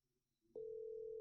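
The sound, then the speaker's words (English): A steady, loud telephone ringing tone of a call waiting to be answered comes on abruptly partway through and holds unbroken to the end, after a moment of faint low background noise. “It's still ringing, honey.”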